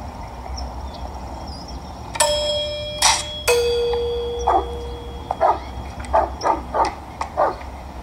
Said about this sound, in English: Ferris has, of course, rigged the doorbell to play a recording